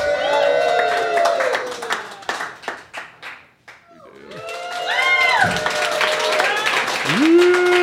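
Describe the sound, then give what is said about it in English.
A crowd cheers and claps loudly, with whoops and hollers over dense applause; the clapping briefly thins into scattered claps before the cheering swells again with high shouts. “So for some reason, we're going to cut away from our podcast, come back to an audience of cheering folk, and then talk about Godzilla. One last cheer, please.”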